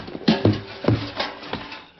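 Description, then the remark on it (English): A clumsy collision in the dark with a wooden rain barrel: several irregular hollow thumps and knocks clatter over about two seconds, loud at first and then scattering, with no one talking. “That rain barrel right in front of you.”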